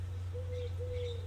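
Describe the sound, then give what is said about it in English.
Birds call outdoors in a backyard: two soft drawn-out whistled notes with a few thin high chirps above them, all over a steady low background hum. “Hearing the birds chirp.”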